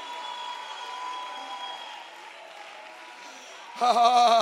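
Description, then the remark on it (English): A crowd cheers and shouts praise to God in a steady, noisy wash over held organ-like tones, then a single loud, strong voice cuts in near the end. “Somebody give God a shout of praise.”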